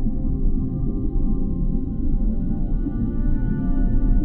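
Low, sustained whale song hums beneath a dense, rumbling undertone, with steady tonal layers drifting slowly and evenly throughout, no voices present.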